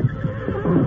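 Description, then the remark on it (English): A horse whinnies in a short, fairly loud burst, its wavering, breathy neigh rising and shaking through under a second with no talking around it. “Look at those horses. Sure seem to be old friends.”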